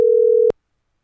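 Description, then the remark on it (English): A single short telephone ringing tone during a phone call, a steady low electronic beep lasting about half a second, cutting off sharply into silence. No voices. “I'm on the phone.”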